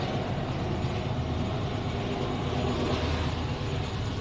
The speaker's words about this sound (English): So I want to wrap up here, guys. As that train goes by and we have a segue, let me wrap this up.